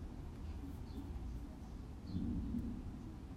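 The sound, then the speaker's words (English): Thunder rolls outside as a low, continuous rumble, swelling slightly partway through before settling again. It's faint, with a couple of soft, high chirps above it and no one talking. “It's thundering outside.”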